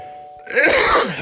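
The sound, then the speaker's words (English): A single harsh, raspy cough bursts out after a brief steady tone, lasting under a second with a rough, throaty texture. No one speaks. “I hate that cough.”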